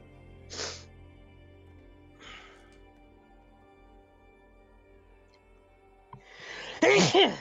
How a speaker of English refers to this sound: Sorry. Bless you. Bless you. I was trying to mute myself before I sneezed. It's okay. It was a good sneeze. Tremendous.